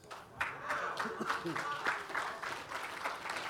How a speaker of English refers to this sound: That was like a golf clap. Pitiful.